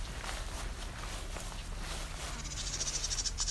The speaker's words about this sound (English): It's also field sparrow singing.